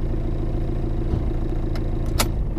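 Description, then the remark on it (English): A car's engine idles with a steady low rumble as the vehicle pulls up and settles into a parking spot by the Lincoln Memorial, with a couple of brief sharp clicks near the end. “Now park by the Lincoln Memorial.”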